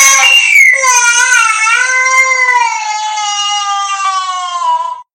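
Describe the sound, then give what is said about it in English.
A child cries and screams in one long, loud, high-pitched wail that wavers in pitch and holds steady for about five seconds before cutting off, with no talking. The child is crying in a backyard after being stung on the finger by a bee. “Suddenly, the loud crying in the backyard got her attention.”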